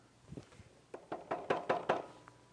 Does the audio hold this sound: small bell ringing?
no